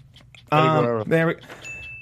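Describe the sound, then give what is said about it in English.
A voice gives two short voiced bursts, then a single clear, high-pitched bell tone rings out during a game, signalling a correct answer, and holds steadily to the end, fairly soft. “I thought I just heard a bell.”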